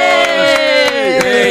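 A loud crowd cheers and whoops in sustained, sliding voices, with faint clapping mixed underneath, continuing steadily without pause.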